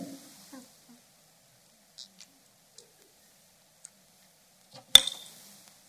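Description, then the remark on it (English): A water bottle is picked up: a few faint, scattered clicks and taps, then one sharp, louder clunk with a brief bright ring that quickly fades. “Okay, hang on, because I got to get this water bottle.”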